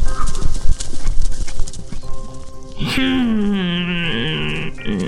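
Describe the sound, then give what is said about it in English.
A goat's hooves stomp in a quick, steady clopping rhythm toward a bridge for a few seconds, then a loud, drawn-out animal cry rings out and wavers before cutting off. “Soon enough, Sasha came stomping along.”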